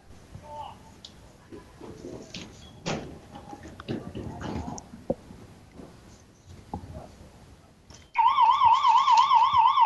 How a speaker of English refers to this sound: And there's the buzzer.